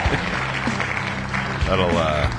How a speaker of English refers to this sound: It's been a hot minute since I've had to do that, so let's not act up, applause button, shall we?